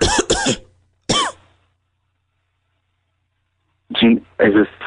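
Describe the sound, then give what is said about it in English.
Harsh coughing from a person on a phone call comes in bursts: a quick double cough, then a single one, a pause of a few seconds, and two or three more rough coughs. “It sounds like you're having a coughing problem.”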